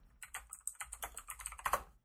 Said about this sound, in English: Sorry for the typing. I will edit out as much as I possibly can.